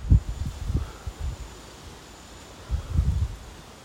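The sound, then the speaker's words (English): Gusty wind buffets the microphone outdoors on a balcony, with low rumbling bursts that come and go over a steady airy hiss. Nobody speaks. “I'm sitting on the balcony right now. It's really windy.”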